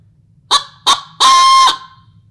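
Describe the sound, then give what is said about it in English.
A coyote howler call is blown as a challenge bark and howl: two short, sharp barks followed by a longer, raspy howl that ends abruptly, loud and alone against a quiet background. “This one's a coyote call.”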